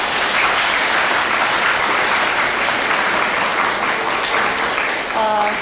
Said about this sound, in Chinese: 正如你们现在看到的，尊贵的索达吉堪布来到了咱们的教室哈。首先，让我们以热烈的掌声欢迎仁波切的到来。